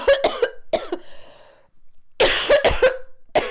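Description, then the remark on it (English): A fit of harsh coughs comes in two bursts: several quick hacks, a raspy wheezing breath, a short pause, then another round of loud, forceful coughing. “One second while I cough.”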